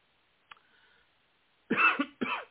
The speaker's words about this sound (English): I know, the first time, unprofessional, I coughed on a live mic. But then again, I got a sore throat.